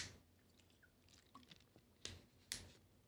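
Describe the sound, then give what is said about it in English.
A quick sip of a drink, quiet: soft wet mouth clicks and a slurp, followed by two sharper swallowing or clunking sounds near the end. No one speaks. “Let me take a quick sip here.”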